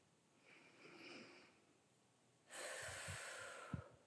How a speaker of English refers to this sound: Breathing in through the nose for 4 seconds, exhaling out, trying to double that exhaling out for 8 seconds. If that's too hard, then inhale for 3, exhale out for 6.